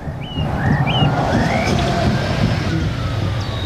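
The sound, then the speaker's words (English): A bus on a busway running through residents' back gardens off Jean's Way in Dunstable drones with a steady, deep rumble that holds at a constant loudness, while brief high chirps, like birdsong, flick above it now and then. “This is what the buses sound like from their back garden.”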